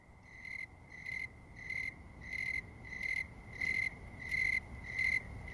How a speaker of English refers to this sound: Writing about the autumnal snowy tree cricket, Nathaniel Hawthorne said, "If moonlight could be heard, it would sound like that."